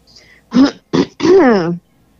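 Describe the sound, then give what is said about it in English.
A woman clears her throat loudly in three quick bursts: two short raspy rasps followed by a longer, voiced, gravelly rumble that trails off into silence. “She had to clear her throat for this one.”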